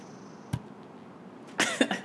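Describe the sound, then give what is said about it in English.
Two cans of nitro coffee knock together once in a toast near the mic, a short dull tap rather than a ringing clink, followed a second later by a brief cough-like burst of breath. “Give me a quick cheers with those.”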